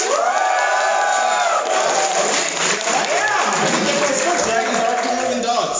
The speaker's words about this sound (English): Let's do this by applause. Who likes dogs better? Yeah. Who likes dragons better?